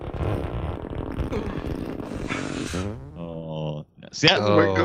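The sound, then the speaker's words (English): A long, loud Foley fart made by farting bare-bottomed into a leather couch, starting with a sputtering rumble and breaking into higher rubbery squeals and a final brassy blast. “That sounded like leather couch fart there.”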